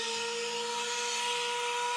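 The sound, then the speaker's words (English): A medication reminder alarm sounds as a steady, unbroken electronic tone with a buzzy hum, held at an even level over a bright hiss for the whole two seconds, with no talking. “Actually, that's fun to talk about because that alarm is for my meds.”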